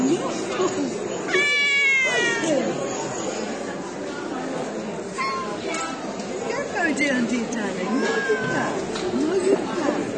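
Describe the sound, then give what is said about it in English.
At a cat show hosting a national competition, with six judging rings and about 200 cats, on a crisp 2-degree morning, a cat lets out one loud, drawn-out meow near the start, set against a busy indoor crowd with steady murmuring voices and chatter continuing throughout. “The show is run by the Hamilton Cat Club and it's also hosting the national competition today.”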